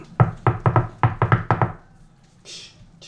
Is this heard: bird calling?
no